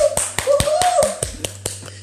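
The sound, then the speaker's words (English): Applause for a woman being introduced, made of about nine sharp, separate claps in an uneven rhythm. A sustained voiced tone, like a whoop, rises under the first second, over a steady low hum. “Let's give it to her with a big loud voice of applause.”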